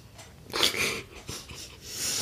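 A few breathy, hissing sniffs in quick succession, as someone sniffs at a drink, with short pauses between the soft inhalations and no talking.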